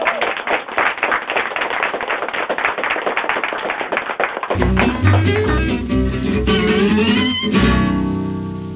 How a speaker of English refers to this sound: Giant round of applause. Yay.